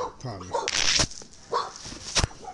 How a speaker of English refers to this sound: Pardon me. Damn dogs barking and shit.